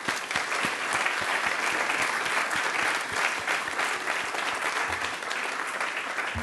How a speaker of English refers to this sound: And yeah, so just can we have a round of applause for everybody?